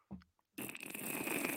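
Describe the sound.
A brief low grunt-like blip, then a loud, sustained wet fart noise with a hissy, sputtering texture that stretches over a second without letting up. It sounds like a person imitating it.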